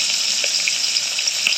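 Steady sizzling of food frying in hot oil, a dense hiss with small pops and crackles scattered throughout, heard alone with no voices.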